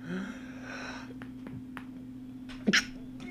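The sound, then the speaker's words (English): A single quick, sharp sneeze bursts out near the end, fairly loud, over a steady low electrical hum with a few faint clicks before it. “Wow, that was a crazy sneeze.”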